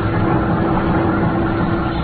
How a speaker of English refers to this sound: The door swung back and forth with the motion of the boat, and I could hear the sound of the engines.